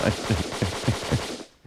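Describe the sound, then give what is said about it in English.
A burst of machine gun fire, about six loud, booming shots in a quick steady rhythm, ending with a short fading tail. “But they can still shoot through your car, especially if you're a honky.”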